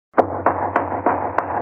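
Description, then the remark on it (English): Five sharp hammer blows from fixing shutters land at a steady, slightly uneven pace, each a bright, loud crack, over a constant low hum with no voices. “I banged my thumb fixing those darn shutters.”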